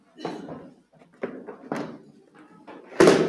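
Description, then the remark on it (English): Front-row chairs clatter and knock as they are folded and stacked, several hollow thuds at an irregular pace, ending in a louder bang. “Can we pack up these front chairs?”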